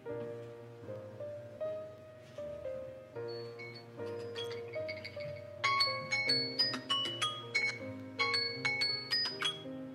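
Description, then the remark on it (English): An electronic alarm tune plays a looping melody of steady tones, then turns brighter halfway through with rhythmic, high chiming notes pulsing in a regular beat. No one speaks over it. “That was an alarm.”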